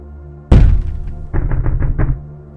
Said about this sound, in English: Boom, the wooden thud again. A bit louder, loud enough for me to immediately recognize its genesis. The basement door.